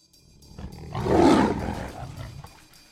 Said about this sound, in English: In the circus, you travel in a trailer and the lions would roar. You'd have, 15 lions going roar, and you'd sleep to the roaring of lions.